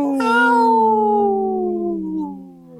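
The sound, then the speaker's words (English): A person lets out one long, loud birthday howl imitating a wolf, the voiced tone sliding slowly downward in pitch for nearly three seconds before fading at the end. “That's my birthday howl.”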